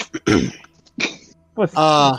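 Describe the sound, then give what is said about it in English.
Rough throat clearing: two or three raspy bursts in quick succession, ending in a short voiced, humming grunt. “No, I'm clearing my throat, man.”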